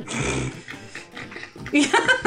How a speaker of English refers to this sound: Oh, Kitty, must you crunch right now?